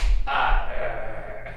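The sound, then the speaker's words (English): A single sharp smack of two palms meeting in a clasped handshake, imitating the Arnold handshake from the film Predator, followed by a brief muffled rustle of gripping hands, with no talking. “I need to get a good clap.”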